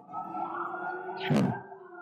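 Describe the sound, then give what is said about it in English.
Sustained, wavering siren tones come through a muffled, phone-like line, with a louder, harsher burst just past the middle. No one speaks. “I hear nothing on the phone but sirens.”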